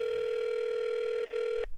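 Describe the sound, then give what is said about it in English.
A telephone ringing tone of a call placed to a traffic psychologist: a steady, mid-pitched electronic hum that holds for over a second, drops out for an instant, resumes briefly, then cuts off abruptly. No voices. “So I called Thomas Schreck, a traffic psychologist, to find out.”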